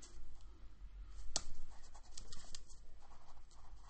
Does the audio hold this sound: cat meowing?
no